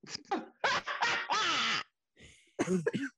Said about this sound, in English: So he made me cough, so I can't say it.